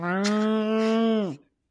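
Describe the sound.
A person imitates a cow with one long, loud, steady moo lasting over a second, then drops off sharply in pitch at the end and falls silent.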